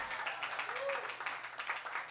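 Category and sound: crowd, clapping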